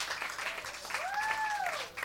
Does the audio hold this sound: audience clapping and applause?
yes